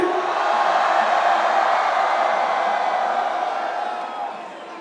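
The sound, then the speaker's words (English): A large concert crowd screams and cheers with hands in the air on the count of three for a group photo, in a loud, sustained roar that holds steady for several seconds, then begins to fade slightly at the end. “So on the count of three, put your hands in the air and motherfucking scream.”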